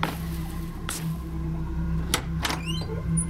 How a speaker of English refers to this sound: As the door opened, we saw a single bed frame with a bare stained mattress and a bunched up sheet at the end.